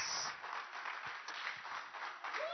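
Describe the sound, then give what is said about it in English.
A crowd at a church service claps their hands steadily, a dense, continuous wash of many overlapping claps at even loudness for the whole stretch, with no voices standing out. “Clap your hands.”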